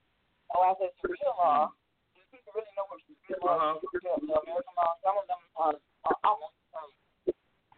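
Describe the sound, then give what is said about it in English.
A thin, band-limited woman's voice comes through a phone line full of static, sounding muffled and far away, speaking in broken bursts with short gaps and some line crackle between them. “All I heard was a bunch of static, too.”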